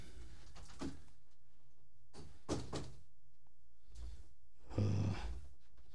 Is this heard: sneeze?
no